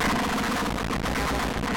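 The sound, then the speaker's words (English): Electric guitar played through a distortion pedal running in its voltage stopped mode at 12 volts, giving a loud, dense, fuzzy tone that holds steady for a couple of seconds with no one talking. “We're actually running the distortion in the voltage stopped mode, so let's hear how it sounds at 12 volts.”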